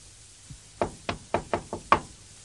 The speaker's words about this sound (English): I go straight to Parliament. Knock the door, you know. And I open it.